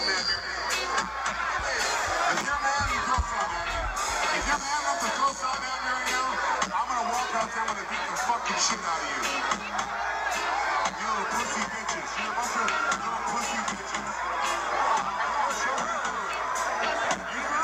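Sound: concert crowd singing along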